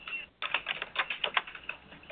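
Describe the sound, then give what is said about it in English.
Rapid, uneven keystrokes clatter on a computer keyboard, heard over a WebEx online meeting, a steady run of light clicks after a brief pause, moderately loud with no voices. “And I am going to mute you because I hear you typing.”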